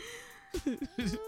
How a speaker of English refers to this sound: My dog is snoring.